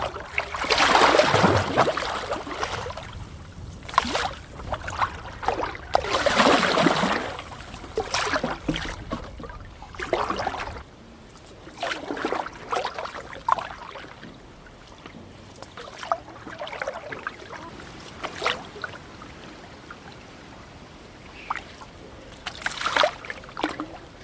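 Rhythmic paddleboard paddle strokes dip and pull through the water of the River Wye on a cloudy, breezy day, each a loud whooshing splash a few seconds apart, followed by softer trickling and dripping as the board glides.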